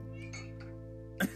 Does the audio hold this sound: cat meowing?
yes